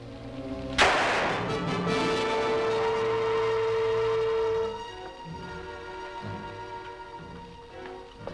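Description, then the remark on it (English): A single sharp, loud gunshot cracks out as a man is shot with a gun, then a sustained ringing chord of music hangs for several seconds before dropping to a quieter, softer passage. “And after he is shot, he falls onto the desk to the exact same position that Baldwin fell in.”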